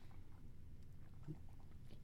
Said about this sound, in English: Big gulp.